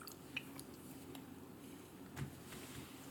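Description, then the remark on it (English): Chewing on a mini Snickers chocolate bar: soft, irregular wet mouth clicks and squishy smacks over a low, steady hum, with no talking. “Excuse me, I was caught me chewing something.”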